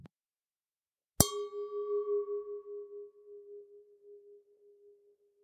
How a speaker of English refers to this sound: The second recording is a very good quality crystal glass made by Riedel. These glasses are meant to hold Bordeaux varietals, so we're talking Cabernet Sauvignon, Merlot, and Cabernet Franc.